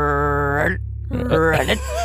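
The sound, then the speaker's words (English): A person does a short vocal frog impression: a drawn-out, nasal croaking tone, a brief pause, then a second rougher, warbling croak, fairly loud over a steady low hum. “That was actually good. It's not a bad frog.”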